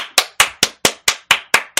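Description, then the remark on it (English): An applause sound effect made of about eight sharp, evenly spaced hand claps in a quick steady rhythm, each one crisp and bright with a short decay, with no voices. “Applause in there for me, Tom, because homegirl deserves it, girly.”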